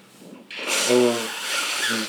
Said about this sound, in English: Hold on, let me take a... I gotta blow my nose. Okay. Blow nose break.